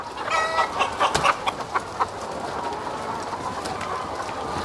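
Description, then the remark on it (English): A chicken clucks in a TikTok video clip being played, in a quick burst of sharp, repeated calls, then fades into a steady, noisy background hiss with a few fainter clucks scattered through. “his famous TikTok video, Where'd the Chicken Go?”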